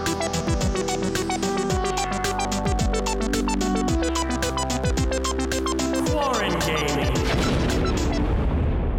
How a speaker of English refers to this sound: Is that a gong sound? Yeah.